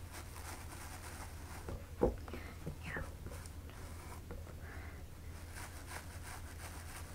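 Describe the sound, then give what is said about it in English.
A soft-bristle toothbrush scrubs a product quietly into a scalp in faint, repeated scratchy strokes with a light rustling texture, broken by a brief soft knock and a single murmured word. “Then I'm just gonna use a toothbrush to scrub that in. Don't worry, they're soft bristles.”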